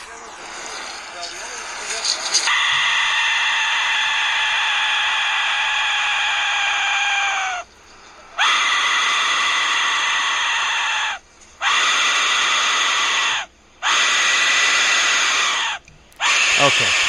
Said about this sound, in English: So yeah, that screaming noise you heard was just an old man blowing into a tiny skull-shaped whistle called the Aztec Death Whistle. It's a screaming skull-shaped whistle.